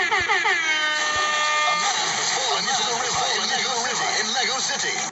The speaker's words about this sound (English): Let me hit that alarm.